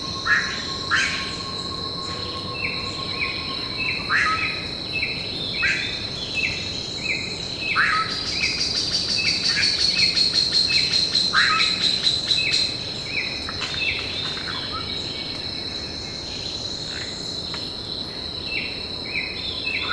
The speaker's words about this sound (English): Dan Grossman and I recorded this dawn chorus when we visited the falls a few years ago.